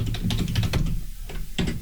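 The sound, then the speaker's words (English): Rapid clacking of computer keys in an irregular burst, fairly loud, with a brief lull before a few more keystrokes. No one speaks. “I need a quieter keyboard.”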